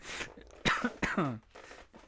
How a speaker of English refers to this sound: Sorry, I'm coughing a lot because I went on a bike ride. Excuse me. I do not have COVID. At least I don't think I do.